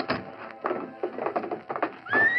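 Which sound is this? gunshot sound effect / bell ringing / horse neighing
horse neighing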